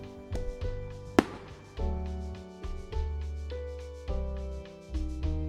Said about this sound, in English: The New Year's Fairy looks like a firework, and she vanishes with a popping sound and a little puff of smoke.